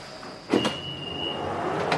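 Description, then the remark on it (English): A London Underground Piccadilly line train to Cockfosters idles at the Covent Garden station platform as its sliding doors thud and hiss, followed by a steady high-pitched electrical whine over a constant rumble of rail noise. “Please mind the gap between the train and the platform. This is Covent Garden.”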